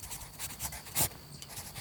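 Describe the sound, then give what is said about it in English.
A pencil scratches quickly across paper as a man hurriedly writes something down, crossing a word out and writing another, in a run of short, rhythmic strokes with one sharper, louder stroke midway, fairly quiet with no voices. “takes out a pencil and hurriedly writes something down. He crosses a word out and writes another.”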